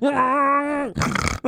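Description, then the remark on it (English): A person gives a long, low, steady moo imitating a cow, held for almost a second, followed by a short burst of breathy, noisy vocalizing. “That's a great cow noise. That sounds just like a cow.”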